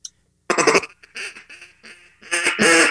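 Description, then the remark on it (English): A loud series of raspy, descending quacks of a mallard hail call blown on a wooden duck call, starting in sharp bursts and ending in long, drawn-out honks, with no talking. “Or the hail call.”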